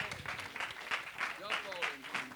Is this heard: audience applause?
yes